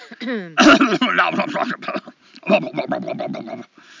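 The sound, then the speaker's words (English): A sharp, loud cough bursts out near the start, followed by a few seconds of rough, throaty vocal sounds like a person clearing their throat. “I cough as I'm talking about COVID.”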